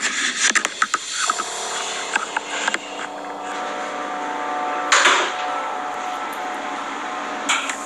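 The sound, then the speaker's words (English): Someone knocks on a wooden door to make a noise: a quick cluster of sharp knocks, then a few scattered thumps and a louder burst of noise, all over a steady mechanical hum with no voices. “That was the door.”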